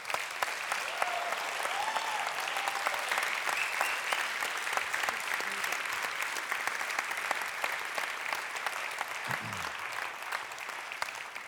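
A crowd applauds steadily, a dense wash of many hands clapping at an even loudness for the whole stretch, with a brief murmur of voices underneath near the end.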